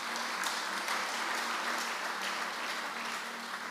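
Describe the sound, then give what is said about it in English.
A church audience claps together as a clap offering to the Lord, in a steady, dense wash of applause that holds at an even loudness throughout, with no voices rising above it. “Because at the end of the day, let me show you some 5 minutes something, and then I could give the Lord a clap offering somewhere.”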